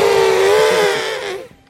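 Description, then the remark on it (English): Someone imitates an elephant trumpeting: one loud, brassy, buzzing blare held steady in pitch for over a second before it trails off, with no talking over it. “Can you make the sound of an elephant?”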